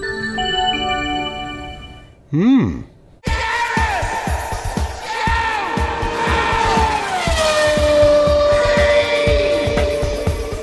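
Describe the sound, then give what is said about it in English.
A short series of electronic start-up chimes from a Hyundai Ioniq Hybrid as its start-stop button is pressed, stepped tones ending in a swooping whoosh, followed by loud, busy engine roar and squealing tyres. “I'm Gareth, and the car which makes that distinctive series of tones when it starts up is the Hyundai Ioniq Hybrid.”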